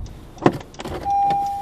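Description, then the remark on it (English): A sharp knock and rattling clatter as a woman closing a car door misses and her key swipes across the car's back panel, then a thin, steady high squeal of metal being scraped, fairly loud, with no one talking. “This chick, with her key in her hand, went to close the door, missed the door, and swiped that key right across the back panel of my car.”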